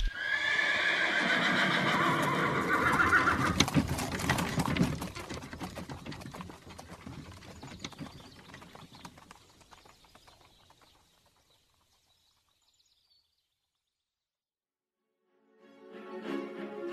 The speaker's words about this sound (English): The driver whips the 6 horses and they take off, leaving you in a cloud of dust.